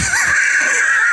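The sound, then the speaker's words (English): A voice imitates snoring with one drawn-out, high, wheezy whistle that holds steady for about a second, loud, with no other talking, standing for the snoring of a sleeping character, Henry, in a retold story. “He hears that Henry is snoring.”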